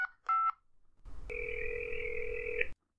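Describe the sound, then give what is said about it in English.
A house phone is dialed to ring 9B with two quick beeping tones, then after a burst of line hiss a steady electronic ring sounds for over a second, clear. “I'll give 9B a ring first on the house phone.”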